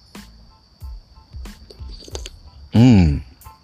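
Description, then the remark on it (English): The first sips of a bought hot coffee: soft wet mouth clicks and gulps over a few seconds, then a loud, drawn-out satisfied exhale. No one speaks. “I'm just drinking a coffee that I bought, and I'm just taking the first sip, and it felt delicious.”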